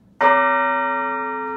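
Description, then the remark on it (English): A single loud strike of a church tower bell rung by bell ringers in the tower, its bright, metallic tone ringing on and slowly fading with no one speaking. “The people who ring in this tower are so lovely, and it's such a joyful sound.”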